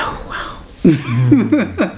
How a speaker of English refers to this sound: I'm just yawning. Your yawning has nothing to do with the story being boring.